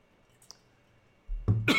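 human body sound, coughing

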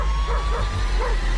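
animal, dog barking

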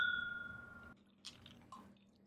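household object, glasses clinking

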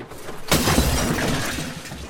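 sound effect, glass shattering

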